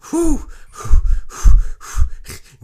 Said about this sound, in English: Deep breaths. Quick little panting breaths coming from …. Like, that was a close one.